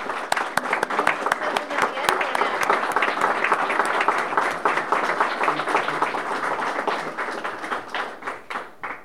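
A crowd breaks into steady applause, many hands clapping in a dense, crackling patter that holds strong for several seconds before thinning out and fading near the end.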